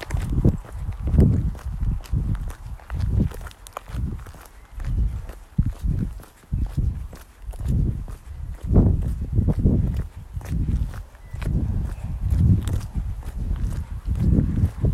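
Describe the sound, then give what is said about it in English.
Steady rhythmic footsteps from several people jogging and walking with hands on their heads during a recovery interval of a running workout, a continuous patter of thuds on the ground with no talking, filling the whole stretch at a moderate, even level. “Jog, walk, hands on your head.”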